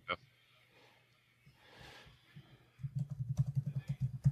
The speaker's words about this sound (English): Sorry, listeners. I'm typing.